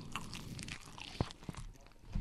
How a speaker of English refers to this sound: It's hard to do a podcast and eat. We gotta do our ASMR. Yeah, yeah, yeah. How many people turned it off already because they're tired of listening to me fucking crunch?